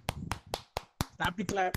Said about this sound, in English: Stop the clap.